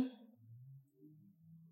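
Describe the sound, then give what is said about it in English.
A single short, sharp COVID cough bursts out, then trails into a low, rough throaty rumble that lingers for over a second. Fairly quiet overall, with no talking. “my COVID cough.”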